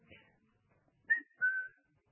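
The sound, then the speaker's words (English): A person whistles a short two-note family call used to gather family members back together: a quick rising chirp followed by a longer steady tone, clear, with a faint murmur just before it. “And I do this little whistle.”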